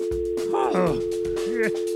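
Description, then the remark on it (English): A steady, unbroken dial tone from a telephone line that has just been picked up hums continuously at a moderate level while a person talks over it, their voice rising and falling above the constant tone. “Let's just make sure we get a good dial tone.”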